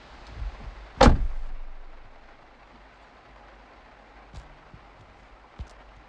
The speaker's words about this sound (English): Close the door.